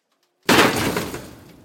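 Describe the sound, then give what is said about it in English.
A pallet holding a heavy wooden crate of pita bread, being unloaded from a truck by a forklift in a warehouse in Castle Blaney, smashes onto a hard floor in one sudden, loud crash, followed by a second of crackling, clattering debris that fades away. No one speaks. “The pallet smashed onto the floor and left a sizable hole in the side of the crate.”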